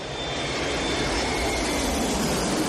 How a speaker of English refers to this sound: And then a plane comes into land.